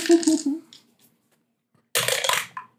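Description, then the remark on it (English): Dice clatter down through a dice tower in two separate bursts of bright, hard rattling, each lasting about half a second, separated by a brief silence. The clatter is fairly loud. “Hey, you don't need to be so violent with your dice in the tower.”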